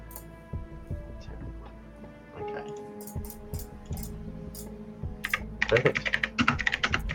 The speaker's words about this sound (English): It's an ASMR keyboard clapping.